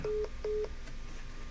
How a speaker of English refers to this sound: You all may have just heard the beep, beep, beep of John being gone.